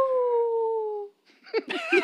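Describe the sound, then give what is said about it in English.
A person imitates a coyote howl, one long, steady, slightly falling note held for about a second. A short pause follows, then choppy, laugh-like vocal bursts. “Where are my coyotes at?”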